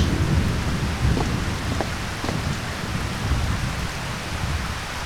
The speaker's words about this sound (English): we're not supposed to be around that acid rain without your suit on. The toxicity of that rain.